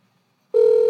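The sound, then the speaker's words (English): After a moment of near silence, a loud, steady electronic ringback tone begins, the outgoing-call ring heard through a phone line on a call to someone's mother, holding unbroken to the end with no voices. “Phone is ringing.”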